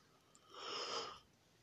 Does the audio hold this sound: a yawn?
yes